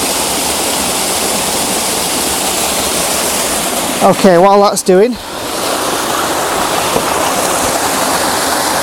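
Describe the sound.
A loud, steady rush of stream water, with lots of bubbles swirling beneath a tree, fills the whole recording, with a man speaking briefly over the flow midway through.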